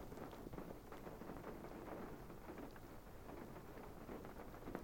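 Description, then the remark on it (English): Steady rain falls outdoors, a dense, even hiss with faint patters and gusty rumble underneath, continuous and fairly soft throughout, with no voices. “So I'm just going to hang around here for a few more minutes and wait to see if this rain stops, and then if it does, we'll just pop out and have a look around and see what's happening.”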